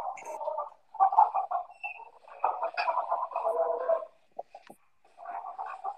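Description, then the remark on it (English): A tinny, lo-fi recording of a rooster crowing plays in the background through a small speaker, with several drawn-out crows repeating back to back over about six seconds. “So I just figured we can keep this going in the background throughout the space to commemorate Rooster”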